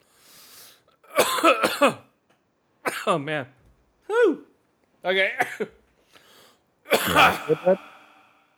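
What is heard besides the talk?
coughing fit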